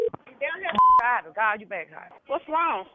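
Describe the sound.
A single short telephone keypad tone beeps once, loudly, while dialing a three-way call, in the middle of continuous speech from a voice talking over a phone line.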